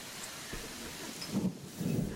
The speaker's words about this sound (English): You guys are standing in the middle of the street, like outside of the water guards. Pandemonium is going on behind you. It's raining harder out here.